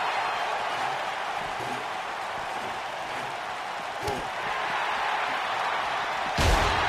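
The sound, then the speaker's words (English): Two sharp, loud chair shots crack out a couple of seconds apart, the second heavier, over a steady roar of arena crowd noise in a fatal four-way wrestling match, as a wrestler hits competitors with a chair. “Kenny Omega's hit every single competitor in this match with the chair.”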